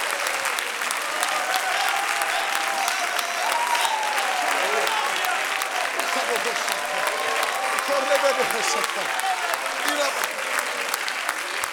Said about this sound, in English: Come on, clap again, clap again, clap again, clap again, clap again, clap again.